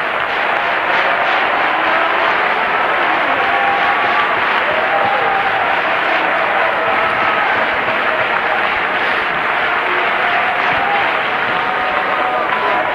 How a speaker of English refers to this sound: Clap your hands and praise Him again.